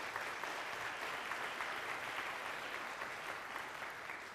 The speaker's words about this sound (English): And so if you love your pastor, will you just give him a hand clap this morning? Come on.